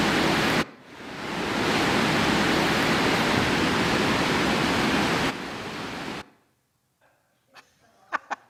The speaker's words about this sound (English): Waterfalls are hard to turn off. But the point of that is that when you are in the woods and there's a big waterfall nearby, you hear it a long way off.